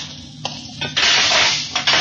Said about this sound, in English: Then I'll open the hatch.